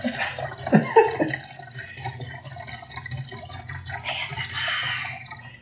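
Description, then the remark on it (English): Two cups of chicken broth being poured into a mixture with celery, a steady splashing gurgle that starts with a few louder sloshes, then settles into a softer continuous pour with a brighter hiss near the end. “We're going to add to the mixture... 2 cups of chicken broth.”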